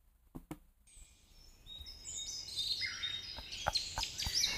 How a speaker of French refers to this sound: On va mettre des oiseaux.